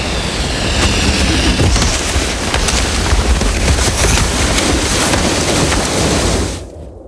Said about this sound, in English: What's that sound? Is that thunder? How could... Oh, my God. Oh, my God. An avalanche.